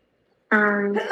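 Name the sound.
sneeze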